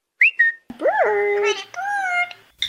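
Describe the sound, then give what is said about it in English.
A parrot vocalizes in security camera footage: two quick high chirps, then a longer warbling call with bright harmonics that swoops up, holds and slides, sounding almost like a whistled, speech-like squawk. “Here's security footage of the parrots.”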